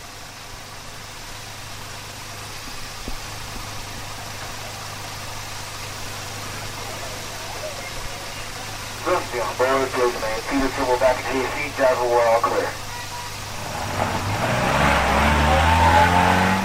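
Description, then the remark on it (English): The Disneyland Hotel tram's steady engine hum drones throughout, recorded live aboard the tram. A muffled voice speaks briefly partway through, then the motor swells and rises in pitch as the tram accelerates. “So all that layered together to create my live recording on the Disneyland Hotel tram.”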